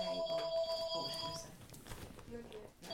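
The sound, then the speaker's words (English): A telephone rings with steady electronic tones through the first half, fading briefly and returning near the end, while people talk over it at moderate volume. “Is that your phone?”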